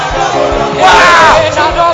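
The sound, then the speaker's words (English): An audience erupts in loud shouts of praise, many voices yelling and whooping together in a dense, sustained roar that swells in the middle before easing slightly. “Give the Lord a shout.”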